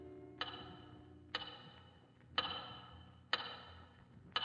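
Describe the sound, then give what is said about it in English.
A big clock, seen through the windows from a cell, ticks slowly and steadily, about once per second. Each tick is a sharp, ringing knock that lingers briefly. Five ticks sound alone at a moderate, quiet level, with no voices. “Finally, light a cigarette, sink down in your cot, and stare through the windows at the big clock.”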